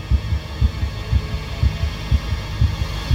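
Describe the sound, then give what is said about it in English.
A loud, pounding heartbeat thumps in a steady lub-dub rhythm, about seven beats in three seconds, low over a faint background hum, with no voices. “I spin around, heart pounding, staring deep into the tangle of branches.”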